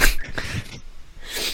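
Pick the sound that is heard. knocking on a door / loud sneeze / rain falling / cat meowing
loud sneeze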